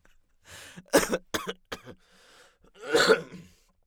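A fairly loud bout of coughing: a quick cluster of harsh coughs and throat-clearing bursts, a short pause, then one more heavy, rasping cough. No one speaks.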